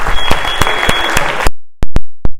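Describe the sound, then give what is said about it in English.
A crowd bursts into dense, steady clapping for an audience member who gave an answer, stopping abruptly after about a second and a half, followed by a few sharp, isolated claps in near silence. “Big hand of applause for, what's your name?”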